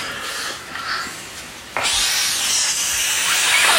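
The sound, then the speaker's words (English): A child imitates a snake with a breathy hiss: softer and airy at first, then abruptly louder and sustained, holding steady without a break until the end. No words are spoken. “Are you the snake? No. Oh, you're just... I'm just pretending.”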